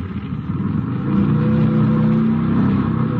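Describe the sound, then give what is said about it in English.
A car engine rumbles steadily, then grows louder and revs up as the vehicle accelerates away to get back on the road, a continuous low drone with no voices over it. “We can probably get back on the road now.”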